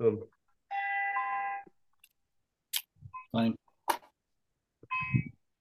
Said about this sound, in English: Are those wind chimes? Yeah. Oh, I got some wind chimes outside, man. They've been going batshit the last few nights. Yeah, the Santa Anas, huh?